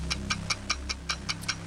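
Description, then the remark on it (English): A game timer for a round of the word game Blurt, set to 45 seconds, ticks quickly and steadily, about eight crisp ticks in under two seconds, over a low, steady background hum. “The timer will start after I finish reading the first question. 45 seconds are on the clock.”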